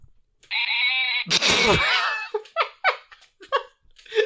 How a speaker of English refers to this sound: Let's hear the sheep.